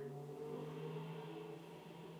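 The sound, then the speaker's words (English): Engine noise from loud, fast cars zooming past outside, a steady droning rumble with a revving hum that holds for a couple of seconds and then eases slightly; no one speaks. “As if on cue, like, really loud cars just passed me right now.”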